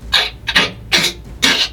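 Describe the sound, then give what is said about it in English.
Four crunchy, crackling bursts of a shell cracking as a snake winds around a creature, coming in a steady rhythm about half a second apart, like a hard shell splintering under pressure, loud with no voices. “You hear shell cracking as the snake winds and winds and winds around it.”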